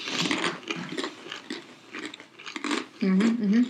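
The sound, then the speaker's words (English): Dry crunching as someone bites and chews plain pita chips to cleanse the palate between wines during a wine tasting, with a series of irregular crackly crunches. A short voiced murmur comes in near the end. “We got some chips to cleanse our palate. Yep. Just some plain pita chips.”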